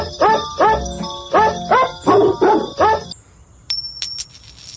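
A nickel is flipped and lands with a few bright metallic pings and a short ringing tone, right after a run of rapid coon hound barks.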